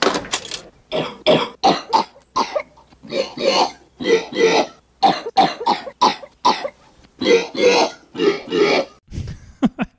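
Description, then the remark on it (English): Coughing and hacking noises played by Ferris on his synthesizer in the film burst out in a rapid, uneven string of about a dozen loud hacks and retches, ending in a brief strained throaty sound. “So as a kid, the coughing and hacking noises played by Ferris on his synthesizer always cracked me up.”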